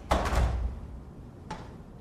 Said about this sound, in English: Somebody just want to open that door, see what that is? Who's curious? Go open the door